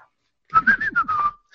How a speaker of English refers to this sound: A soft tone comes from the china cabinet across the room.